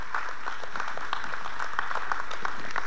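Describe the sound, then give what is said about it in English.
An audience claps together in sustained applause as praise to God one morning, a dense crackle of many hands at a fairly steady, fast rhythm, with no voices over it. “Come on, give God a good hand clap of praise this morning.”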